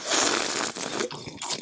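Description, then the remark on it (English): A noisy slurping sip of hot coffee from a cup, a rough airy draw lasting under two seconds with a brief break near the end, and no one talking. “let me get a sip of my Hold coffee.”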